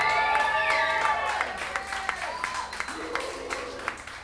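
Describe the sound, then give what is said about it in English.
An audience bursts into sustained applause for the drummer at a live music performance, dense clapping mixed with whoops and high-pitched cheers and whistles, fairly loud and steady across the few seconds. “Will you give a big massive round of applause to Mr. James McPeak on the drums over here?”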